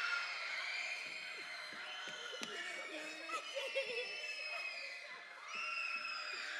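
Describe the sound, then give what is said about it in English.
A large audience screams and cheers on cue in a dense, high-pitched roar that holds steady for several seconds, dips briefly, then surges back up at full volume. “One more time. Scream.”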